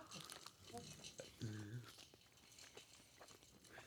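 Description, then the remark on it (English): Wet chewing and crunchy mouth noises from people eating a hot, very soft sausage that tastes of Tabasco, with scattered clicks and a brief murmured vocal sound partway through. “They're trying it. They're chewing, folks.”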